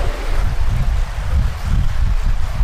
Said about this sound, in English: Sounds like a car is coming. I know, that's what I was thinking, but it's really just the water.